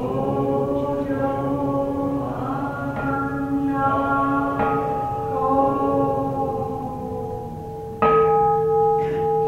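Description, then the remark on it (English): A Buddhist temple bell in the Chicago area is struck several times at uneven intervals, each deep, ringing tone overlapping the long hum of the last, with a louder strike near the end. “For worshippers at the temple, the idea of automating the Dean Gongs or the Kansho is ridiculous”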